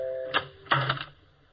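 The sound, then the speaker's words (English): A funeral parlor doorbell chime rings out a short melody likened to Chopin, several bright struck notes in quick succession, each ringing briefly before the next, with no voices. “Ooh, listen to that doorbell. Chopin, at least.”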